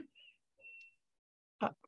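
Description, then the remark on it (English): Two soft, high-pitched electronic beeps from a clothes dryer in a house, the second one longer and steadier, followed by a short burst of someone talking. “No, you heard my dryer beeping.”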